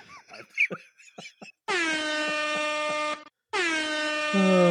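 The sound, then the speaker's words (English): A couple of seconds of voices and laughter, then two long, loud, blaring air horn blasts, separated by a brief gap. The second blast runs to the end. “It's just air horns make me laugh way too much.”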